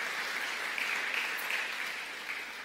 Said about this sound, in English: yes, you can applaud for that. It's worthy of applause.